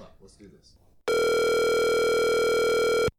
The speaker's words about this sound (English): Dial him up. Let's do this.